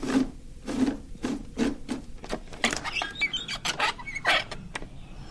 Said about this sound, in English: Why are these birds chirping in the middle of the night? They are spooked.